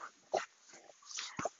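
A friendly, decent-sized dog whimpers and yips in short, high-pitched bursts, two sharper cries standing out among softer whines, with no talking.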